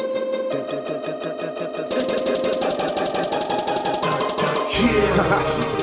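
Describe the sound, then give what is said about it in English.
Dramatic, superhero-style music with a fast, driving pulse under sustained tones, steady and loud throughout, with a heavier low rumble swelling in near the end. No one speaks. “Man, it sound like some straight superhero music, don't it?”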